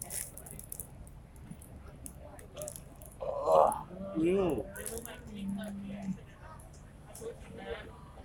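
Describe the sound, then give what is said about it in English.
A short, voiced burp rises out of quiet background noise, a gurgling, wavering croak lasting about a second, followed by a faint steady low hum. “You just burped.”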